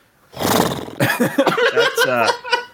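A voice imitates a horse's neigh: a breathy, rough burst followed by a long, wavering whinny that trembles up and down in pitch, loud, lasting a couple of seconds.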